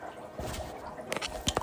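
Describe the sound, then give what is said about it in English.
Quiet wet slurping and liquid sounds as someone sips water, a few short squishy gulps in quick succession with no talking. “Need some water. Hold on a second.”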